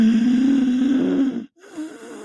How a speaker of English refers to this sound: I had a sound playing in the background of a person with heavy breathing.